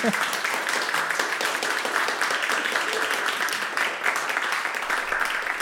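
Audience applause for a Canadian singer-songwriter fills the whole stretch, a dense, steady wash of many hands clapping at an even, fairly loud level with no voices standing out above it.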